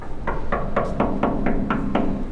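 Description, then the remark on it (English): A huge sealed entrance door of a medical facility, built to seal it off in case of a chemical weapons attack, grinds shut with a steady run of eight evenly spaced metallic clanks over a constant low mechanical hum, fairly loud, with no voices. “He shows us that the entrances can also be sealed in case of a chemical weapons attack. Okay, this huge door.”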